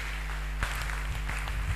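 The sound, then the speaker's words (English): Scattered clapping from an audience at a sermon forms a soft, dense patter, with a few sharper claps standing out over a steady low hum. No one speaks. “Your clapping is not strong enough.”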